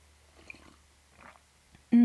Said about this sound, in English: Did you hear that? Lovely swallowing sound. Oh my god, I should have done that on the other side of the mic. That was rude. That was incredibly rude.